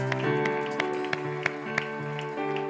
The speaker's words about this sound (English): One more time. Let's give my hand clap of praise.